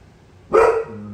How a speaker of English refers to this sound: Barking because Lady Di is on her way... Oh, barking